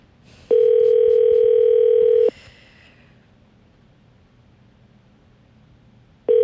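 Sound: telephone ringing tone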